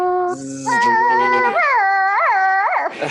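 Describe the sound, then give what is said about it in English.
A voice imitates a dial-up modem: a brief hiss, then steady whining tones that step up in pitch, breaking into warbling, wavering squeals, loud and alone for about three seconds. “I still have nightmares of the dial-up sounds.”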